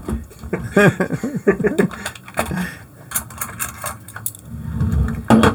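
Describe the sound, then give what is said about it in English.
Voices sound first, then a silver dollar coin is flipped and clatters onto a wooden surface, giving a few sharp metallic taps and a brief rattle before settling. “For those of you who may not remember, the coin is a 1976 centennial silver dollar.”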